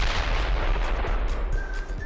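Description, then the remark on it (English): A rapid series of small explosions crackles and pops continuously for a couple of seconds, with sharper bursts every fraction of a second over a dense, loud rumble; no one speaks. “Did you lose any teeth during the explosions?”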